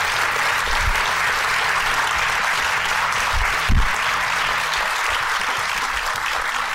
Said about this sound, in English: So we truly appreciate it, and I think that we should all give a round of applause for all three of our panelists.